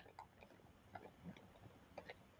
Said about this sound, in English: As I chew my M&M's and nuts. You and this little trail mix ain't gonna wire me. Yeah, this only food I got in my refrigerator, okay?